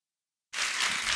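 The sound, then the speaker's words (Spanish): After a brief silence following a prayer, a church audience bursts into applause for God: a dense, steady wash of many hands clapping at once, fairly loud and sustained, with no voices on top. “Dele un fuerte aplauso a nuestro Dios, por favor.”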